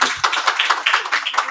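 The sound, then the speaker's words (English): A group of people clap together in a quick, steady burst of sharp, overlapping hand claps, fairly loud and without any voices. “We got to clap that up.”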